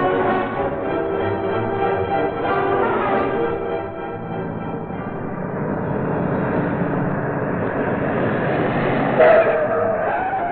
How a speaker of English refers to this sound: When the car stopped in front of the Mannheim house, Axford was out of it first.